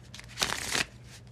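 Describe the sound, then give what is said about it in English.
A deck of tarot cards is shuffled in one short, crisp riffle lasting under half a second, fairly quiet, with faint softer rustles around it and no one talking. “Let me give the deck a few shuffles and we can get straight into it.”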